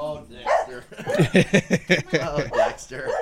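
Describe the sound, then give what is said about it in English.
A dog barks in a quick run of short, sharp yaps, with a person's voice talking around and between the barks. “I know you think you run things, bro, but you got to go, dog.”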